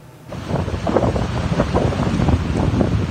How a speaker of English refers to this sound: As winds shook boats at the Maple Bay Marina, this float home drifted onto the shoreline and grounded.